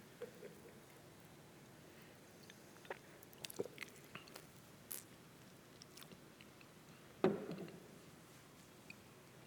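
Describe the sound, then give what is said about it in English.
Someone turns away from the microphone to take a drink of water, with faint wet mouth clicks and gulps, then one louder swallow near the end, otherwise quiet with no talking. “I'm going to take another drink of water, and I promise to turn away from the microphone.”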